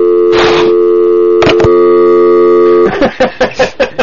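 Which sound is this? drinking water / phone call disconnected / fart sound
phone call disconnected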